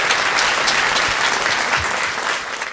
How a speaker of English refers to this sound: These guys have done a fantastic job. And I ask you to give a round of applause to them.